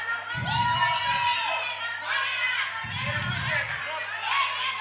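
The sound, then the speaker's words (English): A church audience shouts, prophesies and speaks in tongues all at once in an overlapping, excited din, with loud bursts of chatter and cries sustained throughout the few seconds. “stand up and start shouting like you're manifesting, like, you know, Holy Spirit is doing you. Go on. Just be screaming.”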